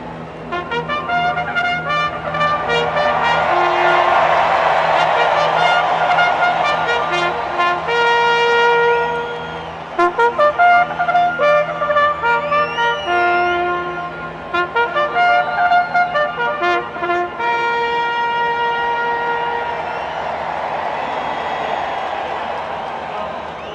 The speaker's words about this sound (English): Listen to that crowd roaring. So later today, the 2021 Kentucky Derby officially kicks off, one of the longest running sports events in U.S. history.